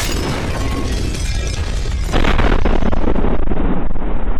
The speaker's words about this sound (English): the explosions that followed threatened to bring down the Great Hall's ceiling.